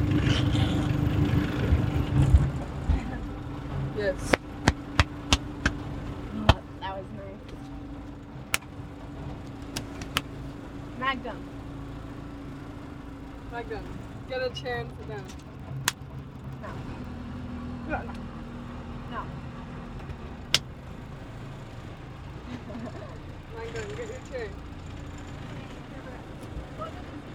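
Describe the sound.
A motorboat engine on a lake drones steadily at a low pitch, with scattered sharp clicks and knocks over it and faint voices now and then; a boy is manning the boat.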